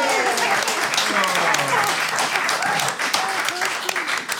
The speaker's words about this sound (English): A round of applause for both our teams.